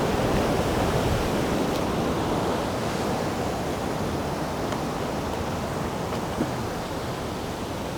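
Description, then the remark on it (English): Ocean waves surge against rocks in a constant, loud roar of surf, a dense wash of water noise that barely rises or falls, with no voices; large waves hit a rock and shoot straight up over it. “It hits the rock in front and goes straight up over where I was about to stand.”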